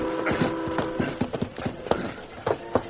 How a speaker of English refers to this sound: The great-hearted stallion Silver seemed to sense that something was wrong and bent his efforts to greater speed